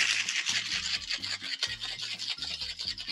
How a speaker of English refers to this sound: So now I got my shaker tin. I'm the same as you. I'm going to take my drink and I'm going to shake it.